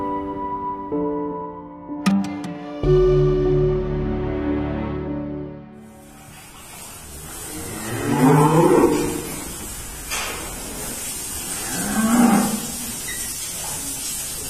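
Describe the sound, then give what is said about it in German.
A short musical passage fades into a farm in the village of Travneve, Chernihiv region, northern Ukraine, where a steady mechanical hiss and hum of a milking machine runs, with two loud, drawn-out moos from cows standing at it rising over it. “Das da sind Kühe, die gerade an der Melkmaschine stehen, in einem Bauernhof ganz im Norden der Ukraine, in einem Dorf, das Travneve heißt, in der Region Tschernihiv.”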